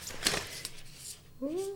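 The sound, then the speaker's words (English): A deck of oracle cards shuffled in a few quick, papery bursts, fairly soft, with a short voiced murmur from someone near the end. “So what we do when we usually do oracle cards is we shuffle and one will literally jump out at you.”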